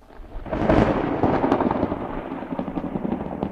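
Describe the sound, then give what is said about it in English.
Raven Blend tea pours steadily into a cup, a continuous splashing, gurgling rush that swells quickly at the start and keeps going for a few seconds, with no talking. “Hi there, today on Typical Books, it's just a quick little update on what I've been reading, what reviews are to come, and I'm going to pour me a cup.”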